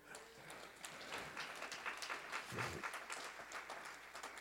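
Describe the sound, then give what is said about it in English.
Thin, scattered audience clapping carries on unevenly for several seconds, a loose patter of separate hand claps rather than full applause. “When you need to be filled, praise, that was a weak patty cake clap.”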